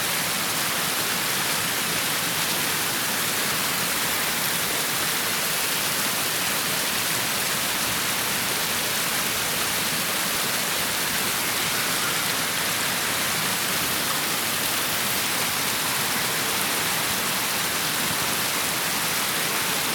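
The Sacony Creek flows steadily, its water making a continuous, even rushing hiss that stays constant throughout with no voices or other sounds breaking through.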